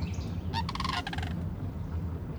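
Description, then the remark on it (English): A flock of spindly white cranes in the marshes alongside Highway 85 in eastern Arkansas gives a brief burst of harsh, rattling, stuttering calls lasting under a second, set against a steady low rumble that continues after the birds fall quiet. “A flock of spindly white cranes pepper the marshes alongside Highway 85 in eastern Arkansas.”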